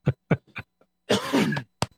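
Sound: coughing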